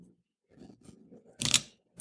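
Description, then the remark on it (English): A water bottle is opened: soft handling and rustling, then a brief, sharp crackling burst as the cap twists free, with no voices. “Sorry, I'm opening my water bottle.”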